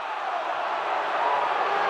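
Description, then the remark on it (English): A crowd at a tournament voices its disapproval of players deliberately missing shots and losing, in a steady, continuous wash of jeering and murmuring that holds an even loudness for about two seconds, with no single voice standing out. “Well, it's quite obvious what the crowd think of this.”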